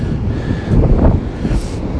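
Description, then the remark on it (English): A steady, broad roar of ocean waves rolling onto the sandy beach at Poppit Sands near Cardigan, swelling briefly louder midway, with wind buffeting the microphone throughout. “I'm standing on the beach at Poppit Sands near Cardigan, and the sound you can probably hear in the background are the waves, which are absolutely fantastic.”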